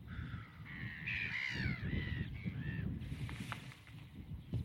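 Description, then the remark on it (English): A series of nasal, slightly rising godwit calls repeats over a couple of seconds, fairly loud, over a steady low outdoor rumble like wind or water. “They got an unusual call, I've not really heard that before.”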